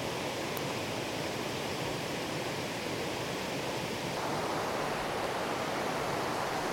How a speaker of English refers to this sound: Just try your best to tune in to the sound of this water on the podcast and tune out of wherever it is that you are, wherever your head is at right now. And let's just experience the sound of this water together, across time, across places.